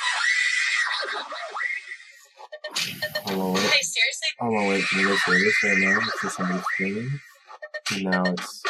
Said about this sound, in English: Yeah, the screaming and then the beat afterwards.